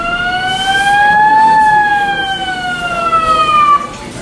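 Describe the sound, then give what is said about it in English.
A fire alarm, pulled by someone in the airport in Milwaukee, wails in one slow rise and fall, a loud, steady electronic tone with a bright, buzzy edge, ringing over a faint background hum with no voices. “Someone had pulled a fire alarm.”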